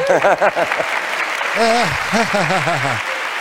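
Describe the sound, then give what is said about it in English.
An audience claps in a steady, dense wash of applause for about three and a half seconds, with a voice rising and falling in pitch over the top of it. “Yes, they have to clap.”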